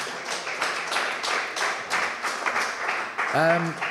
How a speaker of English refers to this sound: There you go, another round of applause.